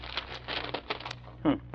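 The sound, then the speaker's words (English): Newspaper wrapped around a gun crinkles and rustles as the gun is unwrapped, in a run of crisp, irregular bursts, with a brief voice sounding near the end. “But this newspaper the gun's wrapped in is today's paper.”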